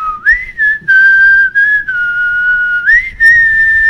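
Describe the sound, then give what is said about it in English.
A person whistles a high, sustained melody that slides smoothly between long held notes, imitating the signature high synth whistle of G-funk music. The whistle is loud, with no talking over it. “It's got like that signature G-funk, you know, high whistle that”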